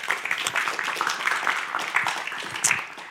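A small audience claps together in a steady, dense patter of many hands that holds at moderate loudness for about three seconds without fading.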